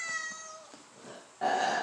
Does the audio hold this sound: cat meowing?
yes